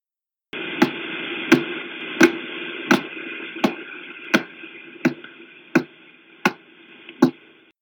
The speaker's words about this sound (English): The term pulsar is an abbreviation for pulsating radio star. Hold on, I'll just play you a recording of a pulsar.